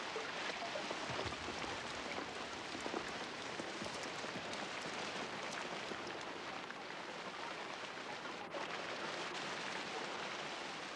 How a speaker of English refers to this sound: This forest, devastated by a late fire set by lightning, appears to have died. But the rains will soon revive it.